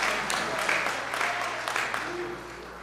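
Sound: audience clapping hands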